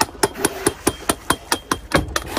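Rapid, regular metallic clanging, about a dozen sharp bright strikes in quick succession, metal objects banged against the side of a boat by its crew to scare off whales, loud with no voices.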